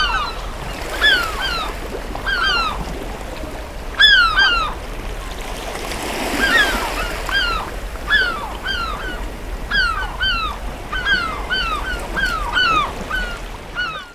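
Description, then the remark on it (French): Sound effects added to a recorded tale: seagulls cry again and again in short, overlapping squawks over a steady wash of sea waves, with one fuller surge of surf partway through. No one speaks. “Il a ajouté par exemple le bruit de la mer, des grincements de porte, des claquements de porte, des bruits de mouette.”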